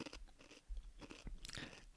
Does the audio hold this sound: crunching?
yes